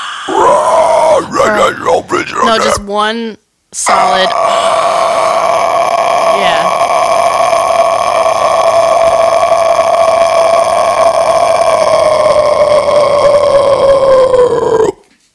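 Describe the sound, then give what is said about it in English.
After a few quick spoken words, a voice launches into a loud, drawn-out metal-style growling scream, held steadily for about eleven seconds before cutting off. “And then there was a thread in the comments of like 200 plus people like recording themselves doing the metal growl or anything like that.”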